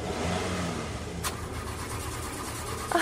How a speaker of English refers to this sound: It's running? It's trying. The car chugged and chugged.